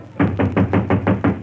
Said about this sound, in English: Who's that knocking on the door, Mary?